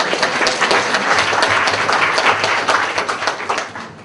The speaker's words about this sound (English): Very brave people coming to the hot seat. We must give everyone a clap who's already come to the hot seat.